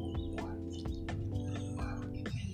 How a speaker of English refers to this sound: Another beautiful day here in Baltimore, man. Birds are chirping.